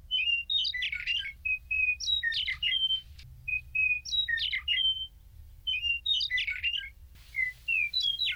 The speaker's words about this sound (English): And that is the meadowlark. And I know this bird well because I grew up in the Midwest and heard it all the time. This is a medium-sized bird, about 8.5 inches in length, and it nests on the ground that it covers with grass to camouflage its nest.